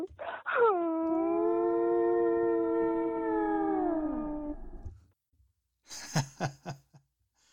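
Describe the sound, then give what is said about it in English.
A blue whale call: a single long, loud moaning tone with rich harmonics, held steady for about four seconds before sliding downward. After a pause come a few short, choppy bursts. “This is a blue whale.”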